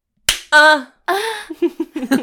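One sharp hand slap cracks out at the start, followed right away by loud, drawn-out vocal exclamations and then quick excited chatter.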